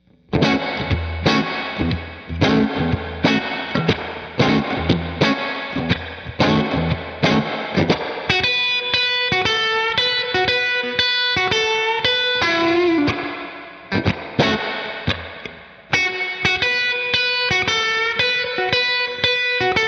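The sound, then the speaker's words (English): An electric Strat guitar played straight into a Deluxe Reverb tube amp, with crunchy, slightly overdriven chords strummed in a steady rhythm, then ringing sustained notes and riffs. Loud and alone, with no voices. “So you've got the Strat today. You're using Deluxe Reverb”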